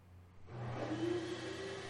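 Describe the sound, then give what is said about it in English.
A hand dryer kicks on suddenly after a brief quiet moment, blasting a steady, loud rush of air over a low motor hum that rises slightly in pitch. “Somebody's running the hand dryer.”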